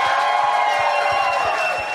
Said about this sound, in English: Let's clap for Hannibal Buress. He's got to go to his late show.